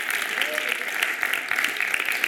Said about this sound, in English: Come on, give him a big hand clap and thank him for that. Come on, give him a shout.